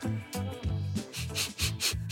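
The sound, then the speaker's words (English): A few quick, breathy sniffs at a wedding ring in a loose rhythm, each a short hissy burst of air, over a low tonal hum that runs underneath throughout. “I'm just sniffing my wedding ring.”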